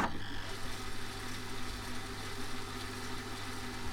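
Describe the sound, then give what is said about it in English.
A VHS tape rewinding inside a player, a steady motor whir with a low hum and faint rattling, continuing evenly for the whole stretch with no voices. “VHS tapes. Better rewind that before you go back to the video store.”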